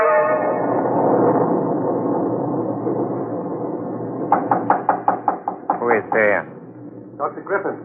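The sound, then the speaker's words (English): A rapid series of sharp, fairly loud knocks on a door, about eight in a row, followed by a brief pause and a few more knocks, coming after a steady murmur of background sound. “Come in. Door is open.”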